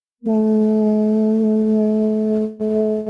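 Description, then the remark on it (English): A person hums a steady, sustained "mmm" on an M sound, on one comfortable mid-low pitch, loud and even, breaking off briefly near the end before resuming. No talking. “So the humming sound you just made was on an M like Marissa”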